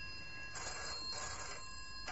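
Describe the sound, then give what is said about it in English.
A telephone bell rings in two quick trilling bursts, steady, with a low background hum and no one speaking. “Now stop wrestling with my conscience and answer that phone.”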